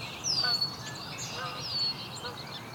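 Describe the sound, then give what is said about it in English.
A female song sparrow sings, giving two thin, high, downward-slurred whistled notes about a second apart, fairly soft against a steady background hiss. “The song sparrow.”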